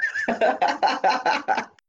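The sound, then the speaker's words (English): A horse whinnies, a loud neigh that starts with a high held note and breaks into a quick series of about six shuddering pulses before fading out. “Pretty sure the horse tries to steal at least one.”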